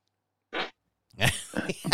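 A short, sputtering fart of about a fifth of a second rings out clearly, followed after a brief pause by louder voices breaking in.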